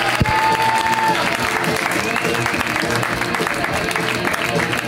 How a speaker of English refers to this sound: Please clap it up